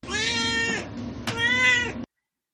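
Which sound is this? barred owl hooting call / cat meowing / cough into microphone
cat meowing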